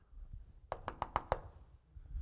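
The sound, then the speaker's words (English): Five sharp knocks rap on a front door in quick, even succession, fairly loud, followed by a quiet pause with low rumble. “Dropped off in neighborhoods, two and three at a time, sometimes four and five of us, which had to be super scary to the people answering the door”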